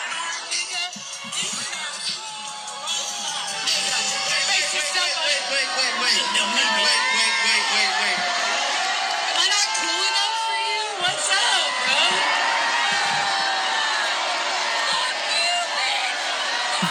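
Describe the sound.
A large concert crowd in a played concert video cheers and shouts continuously, with whoops and yells rising over a dense, loud roar of many voices that holds steady throughout.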